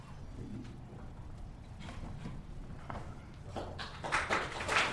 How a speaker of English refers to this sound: All right, clapping already.